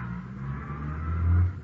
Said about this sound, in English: It's like a truck pulling away. Funny, I didn't hear it approach.